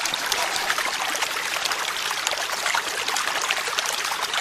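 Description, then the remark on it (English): Steady running water trickles and gurgles continuously down the driveway of a small family outbuilding in Malvern, a bright, hissing flow without pause and with no voices present. “Water continued to run down the driveway of this modest family outbuilding in Malvern.”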